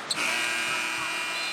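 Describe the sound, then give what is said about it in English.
A basketball end-of-half buzzer sounds loud, a harsh, steady electronic drone that starts almost at once and holds unbroken to the end, with no voices over it, as the Raptors score a layup by Barnes at the buzzer and trail 77-57 at half. “Raptors beat the buzzer on that one.”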